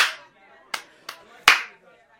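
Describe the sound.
Several sharp hand claps land in a quick, fairly even rhythm as a group of people clap together doing circle rhymes, with a faint murmur of voices in the background.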